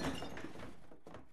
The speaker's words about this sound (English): Then they fell. With a gigantic smash, the enchanted snow globe shattered on the floor.